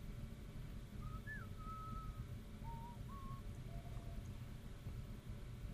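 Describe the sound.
Someone whistles a short movie theme tune, likened to the whistle from the beginning of the film Cloak and Dagger, in a few separate rising and falling phrases, fairly soft, over a steady low rumble. No one speaks.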